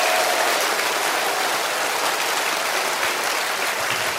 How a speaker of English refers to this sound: So at every campus, can we do this? Can we just give the most gracious round of applause for all of you who are visiting with us? We just want to welcome you.